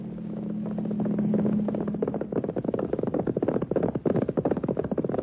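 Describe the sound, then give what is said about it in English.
A steady drone fades out and gives way to horse hooves clip-clopping in a quick, even rhythm, loud, continuing to the end with no voices. “On horseback.”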